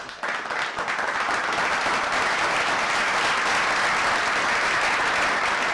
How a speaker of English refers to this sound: Give you a little clap for your success. Give you a little clap for your success, you know.